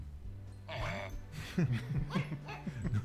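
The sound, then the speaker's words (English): A small dog yips in a quick run of short, high barks, with some laughter or murmuring in the background. “Listen to that little fella just bark.”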